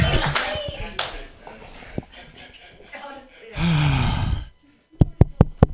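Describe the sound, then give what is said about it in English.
Murmuring voices and a brief rush of crowd noise give way to a few sharp, separate handclaps from an audience near the end, loud, rather than sustained applause. “Clap your hands wildly”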